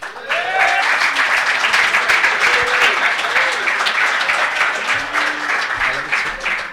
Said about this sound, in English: And please give that round of applause. Keep it going for our panel.